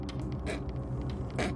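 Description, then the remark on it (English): A door creaks slowly shut with a drawn-out, groaning squeal, steady, punctuated by a couple of brief scraping bursts as it swings closed. “and then he closes the door.”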